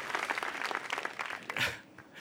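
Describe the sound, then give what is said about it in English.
An audience at a live storytelling event applauds a story in a steady, dense patter of many overlapping claps, bright and crackly at an even moderate level, with no one speaking over it. “I can also tell by the applause who is a person of color also, because my clap, it was hard for me not to clap for you while you were telling the story of just, I feel so seen by that story.”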